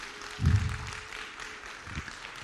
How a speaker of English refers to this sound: Come on, can you give him a good round of applause today?